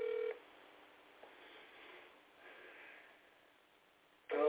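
Telephone keypad dialing tones as someone calls their aunt: a short electronic beep at the start and another at the very end, separated by a few seconds of quiet, thin phone-line hiss. No one speaks.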